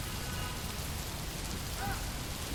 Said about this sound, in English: Just stopping and listening to the rain beating down on the roofs and the buildings. It's like a song.